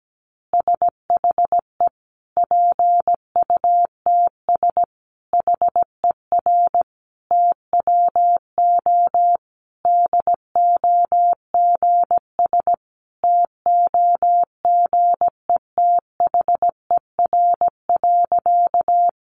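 Morse code beeps sending easy practice phrases at about 17 words per minute: a single steady mid-pitched tone keyed into rapid dots and dashes, grouped into words with brief pauses, with no voices.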